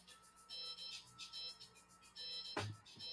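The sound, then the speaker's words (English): A work phone ringtone plays upstairs, a repeating electronic melody in bursts, muffled, with a brief low thump near the end. “That's got music playing. My work phone upstairs.”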